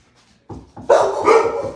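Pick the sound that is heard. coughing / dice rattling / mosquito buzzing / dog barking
dog barking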